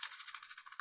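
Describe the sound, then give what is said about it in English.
A voice imitates a rattlesnake's rattle: a steady buzzing hiss with a fast pulsing flutter, held alone for under a second with no talking. “Oh, is that a snake?”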